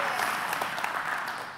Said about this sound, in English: Come on, clap it in. We're agreeing today.